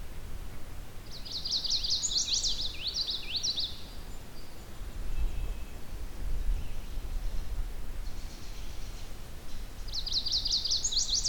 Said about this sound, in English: There's our yellow warbler.